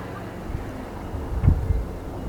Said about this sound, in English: It's a windy front coming in here from the west. I stand here looking toward the western sky, the sun starting to set. Here in Corvallis, Oregon.